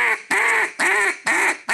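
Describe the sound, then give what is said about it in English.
Four loud, nasal quacks in a steady, evenly spaced rhythm, each a short raspy burst, clear with no talking, made by a duck call imitating a mallard hen. “That's the reality of it is a mallard hen quack.”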